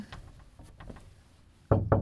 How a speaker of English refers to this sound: Just got to knock on wood. There we go.